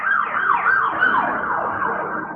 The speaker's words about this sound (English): Uh-oh. Oop, I've got sirens.